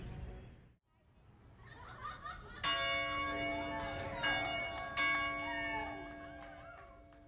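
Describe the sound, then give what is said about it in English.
A large bell rings out loudly outdoors downtown on a game-day Saturday amid tailgating, on a nice 71–72 degree day with slight wind. It is struck several times with long ringing tones that overlap and linger, over a background murmur of a crowd chatting and occasional laughter. “Well, as the bell rings behind me, I continue my search for some more tailgating”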